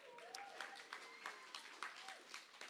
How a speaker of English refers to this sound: Round of applause for all of our amazing tech team.